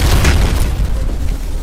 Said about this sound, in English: But they all died when a giant asteroid crashed into our planet.